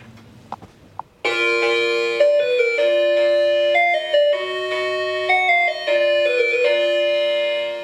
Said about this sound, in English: I want to hit your doorbell again and record the sound of it because it's amazing.